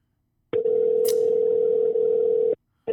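A phone ringback tone: a steady, loud electronic hum lasting about two seconds, a short pause, then the next ring beginning, as when waiting on a call that goes unanswered.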